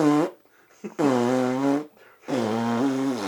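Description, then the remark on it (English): Three loud, buzzy fart noises in quick succession, each a sustained wavering blast, that sound like a voice imitating flatulence with the mouth, with short silent gaps between them. “My dad was like, I can't hear anything he's saying, but I can hear the guy next to us fucking farting.”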